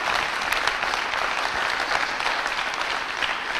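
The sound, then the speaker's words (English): A steady burst of audience applause, many hands clapping in a dense, continuous patter at an even loudness throughout, with no voices rising above it. “I think we all owe the four folks behind me a round of applause and a thank you.”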